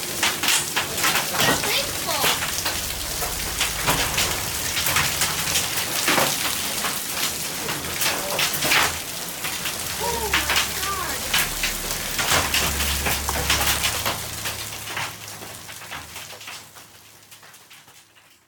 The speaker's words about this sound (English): A severe thunderstorm warning has just been issued from a storm that contains baseball-sized hail. Oh my God, look at that!